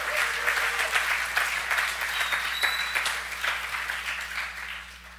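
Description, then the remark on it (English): A church audience claps steadily together as a clap offering unto the Lord, a dense wash of many overlapping hand claps at even loudness for several seconds, with no voices standing out. “Can somebody give a clap offering unto the Lord?”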